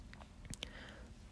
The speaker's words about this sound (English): Ugh, that was the weirdest cough.